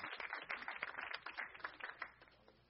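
A crowd gives a hand clap on cue, a dense patter of many hands at moderate loudness that thins and fades over a few seconds, with no voices over it.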